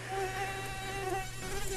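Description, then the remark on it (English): A steady, high-pitched mosquito whine hums continuously, holding a thin, even drone with slight wavering in pitch and no voices. “Are you with me or against me? Go mosquitoes! Go mosquitoes!”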